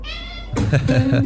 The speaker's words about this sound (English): The blues singing cat. Say what? Yeah, baby. Singing the blues on this Tuesday.